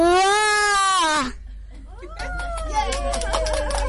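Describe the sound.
A 6-year-old boy, cast as the little bad wolf in a stage show, imitates a wolf's roar with two drawn-out, howling cries: the first loud and strained, sliding down at the end, the second wavering and falling over some background noise.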